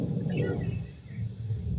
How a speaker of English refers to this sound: Because that was just like real lightning. Thunder.